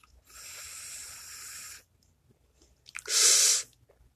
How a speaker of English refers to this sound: Drink your wine. Drink your hard liquor. Drink your beer. Hey, give me a couple of sips right here.